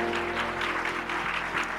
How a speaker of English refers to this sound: So let's give a round of applause for those on Facebook, y'all.